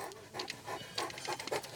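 A dog pants in quick, breathy bursts, a steady rhythm of short huffs with no voices.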